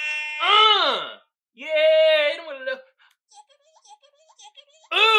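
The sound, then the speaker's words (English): Loud, brassy air horn blasts: a first honk that bends downward in pitch, a longer steady blare, then a run of short faint stuttering toots before another loud blast starts at the end. “So let's hit the air horns.”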